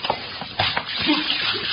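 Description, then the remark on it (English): A sudden splash of water thrown from a pitcher onto a knocked-out man to get him up, a quick wet burst followed by a spreading, noisy spatter and shuffling that carries on for a second or so. “Hey, let's have that pitcher of water here.”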